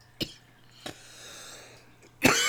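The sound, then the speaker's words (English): Three harsh, raspy coughs after a smoking hit, spaced unevenly; the first two are short and sharp, and the final one bursts out louder and lingers longer. No talking. “They make you cough.”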